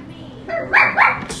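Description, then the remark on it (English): A dog lets out two quick, sharp barks in close succession, loud, with a low murmur of voices and background noise underneath. “But the dog just interrupted.”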